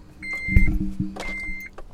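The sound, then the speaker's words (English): A car's electric window motor whirs steadily as the glass winds down, a continuous hum with a faint high whine and some low rumbling in the cabin. “Sorry. I had to wind down the window.”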